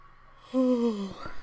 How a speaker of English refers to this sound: I'm sorry for yawning.